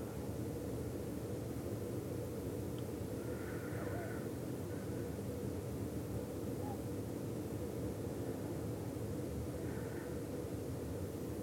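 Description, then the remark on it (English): Steady, unbroken rain falling on a roof and outside, a dense low rushing patter with even loudness throughout, and a couple of faint, brief bird calls rising above it. “The rain hitting things outside sounds different than the rain hitting the roof.”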